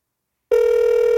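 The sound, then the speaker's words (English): After half a second of silence, the ringing tone of an outgoing call placed on a phone starts: a steady, fairly loud electronic tone that holds evenly to the end, with no voices. “So, I'm actually going to call him on my phone.”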